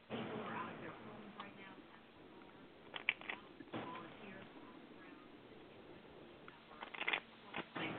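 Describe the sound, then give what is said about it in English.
A deck of angel cards being shuffled by hand, a steady papery riffling with soft ticking flicks and a few sharper snaps near the end, with no one talking. “And I shuffle the cards until my hand tingles.”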